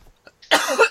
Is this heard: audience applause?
no